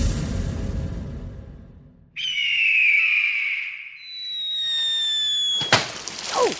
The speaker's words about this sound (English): My brain is telling me a bald eagle flying and dropping a large water balloon on top of a porcupine. All right, here it is, the sound of a bald eagle flying and dropping a water balloon on a porcupine.